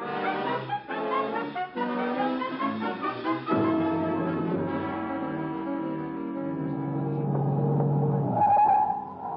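A car engine revs hard and races past, with a loud tire skid near the end; dense, continuous motor roar fills the whole stretch, no talking.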